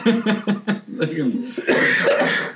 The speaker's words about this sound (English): I heard the cough, and I had to get the black lung pop.